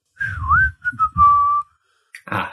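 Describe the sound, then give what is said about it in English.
A person whistles a wavering, sliding tune in a few short phrases, clear, from the other side of a market, ending with a brief burst of noisy rustle. “As you hear another whistle from the other side of the market.”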